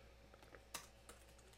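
A few quick keyboard clicks tap out in an irregular rhythm, fairly quiet, with one sharper keystroke standing out over a faint steady hum; nobody speaks. The typing is research into Zane Lowe's background.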